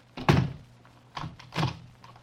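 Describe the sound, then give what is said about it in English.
A door thuds shut, followed a moment later by two duller mechanical clunks, like a lock or bolt being turned. No voices. “When you've had your little argument, the one who's left can knock on this door, and I'll come and unlock it.”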